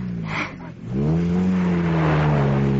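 A racing car engine revs hard, a loud, steady harmonic drone that dips briefly and then climbs back up into a sustained high-pitched roar, with no voices.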